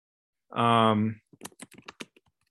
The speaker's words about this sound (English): As you can hear me typing.